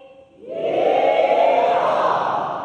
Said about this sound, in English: All right, now, everyone in the whole room, when you hear me say beautiful plants and trees, you're gonna give a big yee-haw. Ready?